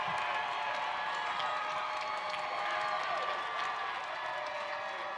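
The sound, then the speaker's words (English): A crowd at a Metro Council meeting applauds and cheers continuously after the council passes an ordinance 26 votes to 0, a dense wash of clapping with scattered voices and whoops, steady and fairly loud throughout without any pause. “And after the cheers die down”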